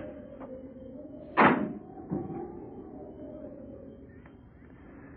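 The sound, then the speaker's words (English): A car door slams shut with one sharp, solid thud, followed moments later by a softer knock, over a low, steady background rumble. “They sat there in the car perhaps 10 minutes before the car door slammed shut.”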